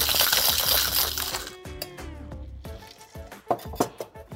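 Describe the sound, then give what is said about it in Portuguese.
A cocktail shaker rattles hard with ice for about a second and a half as the alcoholic version of a drink is shaken to mix its components, then gives way to a ringing metallic tone and a few sharp clinks, with no talking. “Agora vamos bater a versão alcoólica. tá bem. Vai misturar os componentes, vai criar líquido.”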